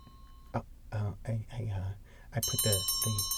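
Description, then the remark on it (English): A small bell hung on a janitor's closet rings out bright and high partway through, its shimmering tone lingering to the end while people keep talking over it. “I put the bell here on the janitor's closet.”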